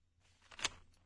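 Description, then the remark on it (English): A short, quiet rustle of papers being shuffled as someone writes a question down, building to one brief crisp swish before fading, with no voices. “You can hear the papers shuffling.”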